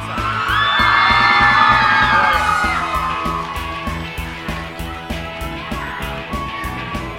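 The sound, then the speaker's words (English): An audience at the Alternative Press MI Conversation Series cheers and claps for John Feldmann and Andy Biersack, with loud high whoops and yells peaking in the first two seconds, then easing off while a steady, rhythmic thumping beat continues underneath. “Can we just get an extra round of applause for John Feldmann's suit?”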